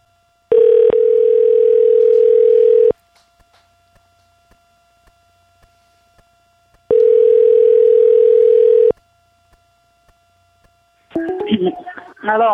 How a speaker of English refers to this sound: So I'm going to go ahead and place this phone call, get this line rolling, and let's get this interview, this little get spot started.